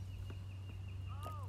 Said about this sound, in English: And there are birds.